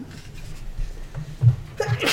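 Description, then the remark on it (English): A single sharp sneeze bursts out near the end, a breathy, hissing explosion of noise after a low murmuring background hum. “Bless you.”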